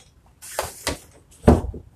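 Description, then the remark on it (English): A door being handled: a few scraping clicks and rattles, then a heavier thud as it shifts or shuts, with no one talking. “Fuck, did I lock the damn door?”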